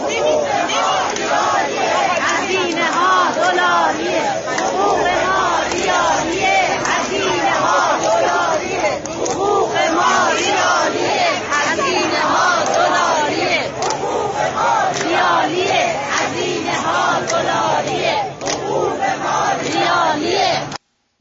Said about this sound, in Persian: باز نشستا جمع شدن جلوی در مجلس